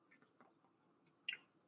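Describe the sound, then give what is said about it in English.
Quiet mouth noises of someone taking a sip of water: soft wet smacks and clicks, then a brief, sharper gulp near the end, with no talking. “Sorry, guys, sip of water.”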